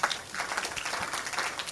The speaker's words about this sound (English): Praise the Lord. A good place to clap your hands.